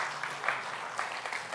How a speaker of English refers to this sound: Can we give a big round of applause for those two wonderful individuals?